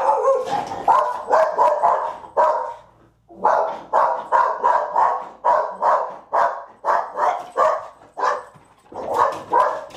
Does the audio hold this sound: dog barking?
yes